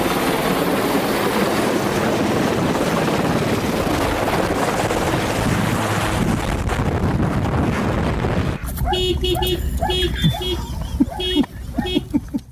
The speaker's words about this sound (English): Right now, 3 helicopters are attacking the fire. And as you can see behind me, this is Thompson River. They're filling up their buckets right here.